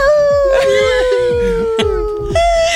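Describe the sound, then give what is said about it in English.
A person imitates a wolf howl on the radio station 107.7 The Wolf: one long, steady wail, fairly loud, sagging slightly in pitch before rising briefly at the end, with light clatter in the background. “Okay, I will howl.”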